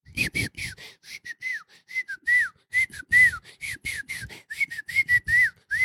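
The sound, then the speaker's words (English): A person whistles an imitation of birdsong: a quick, steady run of short, high chirping notes with little swoops and trills, fairly loud and unbroken by talk for about six seconds. “So, if you're going to have nice little bird sounds in your beautiful little forest soundscape music, now let's see if we can do some bird sounds here on my own.”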